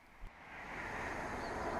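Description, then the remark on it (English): A train not scheduled to stop approaching platform 2 of a station: a broad, rushing roar with deep rumble swells steadily louder over a couple of seconds, with a brief low thump near the start and no voices. “Stand well away from the edge of platform 2. The approaching train is not scheduled to stop at this station.”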